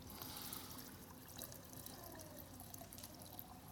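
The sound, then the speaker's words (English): A steady stream of liquid is poured into a container as a sermon illustration, a continuous splashing trickle heard for a few seconds with no talking. “Holy Spirit poured into us.”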